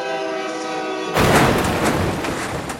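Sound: train horn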